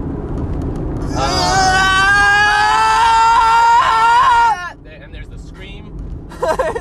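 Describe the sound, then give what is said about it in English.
A voice imitates a scream: one long, loud, high-pitched wail held for about three and a half seconds with a slight waver, over a low rumble, then cut off abruptly. “Can we name it that? That scream? Noise?”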